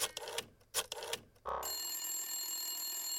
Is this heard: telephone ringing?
yes